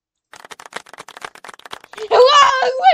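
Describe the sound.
A quick, irregular run of sharp hand claps patters along for a couple of seconds, then a loud, sustained voice cuts in and takes over at the end.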